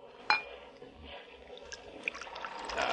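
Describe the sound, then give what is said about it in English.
A drink is poured into a glass, beginning with a sharp clink and followed by a steady liquid trickle that rises gradually in pitch, fairly quiet. “Your glass”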